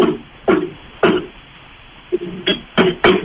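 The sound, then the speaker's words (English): A metal door is worked open and shut, giving a series of short, hollow clanks and knocks at uneven intervals, a few landing close together near the end, with no talking. “So is like there's a metal door that you open? Yeah. Yeah, you can, okay. So can you open and close this door so I can hear it?”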